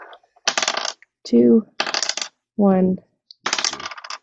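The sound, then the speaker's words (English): Three six-sided dice clatter and tumble across a hard surface in three separate rattling rolls, fairly loud, with brief bits of a voice between them. The dice are rolled for damage in a game. “7 hits for your damage, which is 3 d6s, 3 six-sided dice, and tell which numbers you get.”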